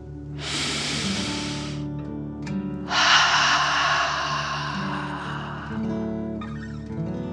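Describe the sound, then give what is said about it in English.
A slow, deep breath drawn in through the nose, a brief pause, then a long, forceful breath pushed out through the mouth, clear over a soft, steady musical background. “Breathe in through your nose and then out through your mouth, pretending you are breathing fire. Deep breath in and out.”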